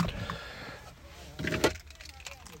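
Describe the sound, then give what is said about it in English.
Car keys jangle in a brief metallic burst, a couple of quick clinks and rattles as they're fitted into the ignition, over a low hum of the car interior. “And I will, let me put my key.”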